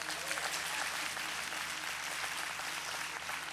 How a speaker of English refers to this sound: As always, let's give our worship team a round of applause.